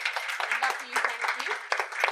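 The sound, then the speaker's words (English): A crowd applauds steadily to thank the W Hotel London for hosting the event. A dense wash of overlapping claps is sustained at an even level for about two seconds, with no clear pauses. “So I'd like to show, first of all, a massive round of applause and thank you to the fabulous W Hotel London for having us in this space.”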